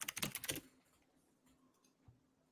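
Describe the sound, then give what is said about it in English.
A quick burst of rapid keystrokes on a computer keyboard, crisp, clattering for about half a second before fading into quiet with a faint hum and a soft click. “That rapid typing tells me that Steve might also be checking.”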